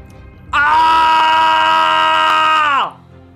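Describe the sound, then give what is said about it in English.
A single loud, sustained scream from a human voice, held steady for over two seconds before dropping in pitch and cutting off, alone like a performed battle cry. “and she buries her short sword into the neck of the troll and screams at the same time, a scream that she's never ever heard from her own body before.”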